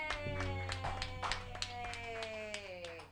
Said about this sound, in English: So I'm gonna step off. We're good. Yep. Everybody clap together